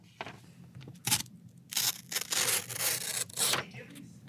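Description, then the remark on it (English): Paper being cut with scissors: a couple of quick, crisp snips, then a run of longer rasping slices that stop and start over a few seconds, with a faint low murmur underneath. “Can I cut this piece of paper?”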